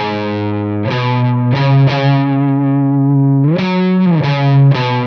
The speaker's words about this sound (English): So to kind of show the difference between that and what we did, this is just the amp distortion.